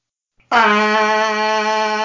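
A loud siren sounds as one steady, unwavering blare, holding a single buzzy pitch with no rise or fall. It starts abruptly after a brief click and carries on alone, with no talk.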